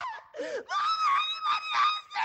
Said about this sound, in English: To anyone else, it sounds like nothing but an 8-second long, blood-curdling scream.